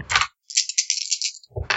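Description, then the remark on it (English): Four dice being rolled during a game session: a short clatter, then a second of bright, steady rattling, then another burst of tumbling clicks. Fairly loud, with no voices. “Can someone roll four dice for me?”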